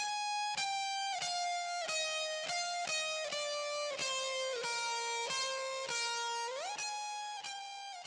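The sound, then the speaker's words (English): A high, buzzing distorted guitar line, pitch-shifted up an octave, plays sustained notes with a steady chugging pulse, then bends upward near the end. Loud, with no voices. “Then I took that last guitar part with the distortion and shifted the pitch an octave higher.”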